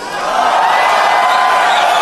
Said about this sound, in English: Just hear that massive cheer from people going on. The electricity in the room. It's fucking heavy.